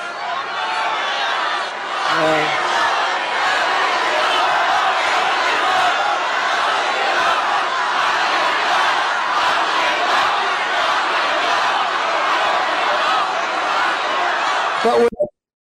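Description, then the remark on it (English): A large crowd at a Donald Trump rally in Arizona chants "lock him up" about Anthony Fauci, loudly and continuously, a dense massed roar of voices that holds steady for about fifteen seconds before cutting off abruptly. “Yeah, lock him up, the crowd says.”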